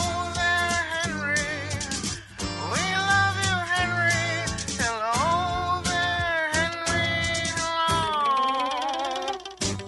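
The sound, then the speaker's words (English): Geese honking loudly and continuously for about ten seconds, several overlapping nasal calls that rise and fall in pitch, with no talking. “And the goose says hello to you, too.”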